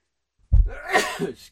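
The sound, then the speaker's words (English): A single sneeze breaks out abruptly after a brief silence, with a sharp onset and a breathy, spraying release that trails off over about a second. “So I'm going to sneeze.”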